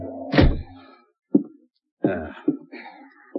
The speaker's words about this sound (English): Kick the door shut.